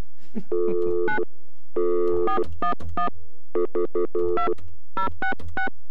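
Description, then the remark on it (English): Electronic telephone line tones sound alone after the other party hangs up on a call to the Ukrainian Home for the Aged: a series of loud beeps in uneven bursts, some held longer and others clipped short. “She hung up on us.”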